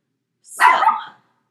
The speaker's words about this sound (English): Sorry, there's our weekly barking for my dog in our weekly episode. Hold on.